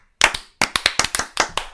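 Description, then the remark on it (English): A short burst of hand claps, about nine sharp slaps landing at uneven intervals, some nearly doubled, as if several people clap out of sync. Fairly loud, with no talking. “None of those claps are going to be synced. It's going to be awful.”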